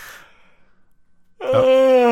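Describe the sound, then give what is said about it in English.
A loud yawn from a man: a soft breathy intake, a brief pause, then a strained, drawn-out vocal moan that swells and holds. No one speaks. “He's yawning very loudly.”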